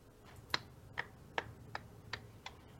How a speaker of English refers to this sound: Gilbot starts clapping.